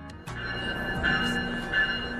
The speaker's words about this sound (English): Welcome to Union Station during morning rush hour, except this is not Metro's Red Line platform. It's a MARC train, slowly arriving, packed with Maryland to D.C. commuters.